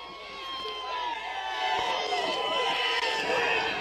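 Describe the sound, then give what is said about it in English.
A large protest crowd shouts and cheers continuously as police squabble with protesters, many overlapping voices forming a dense, roaring wall of sound that swells slightly louder partway through. “Police are squabbling with protesters.”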